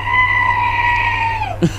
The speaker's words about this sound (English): The horror scream.